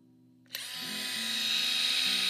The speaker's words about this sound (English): And you've got this thing, this drill in your carry-on bag.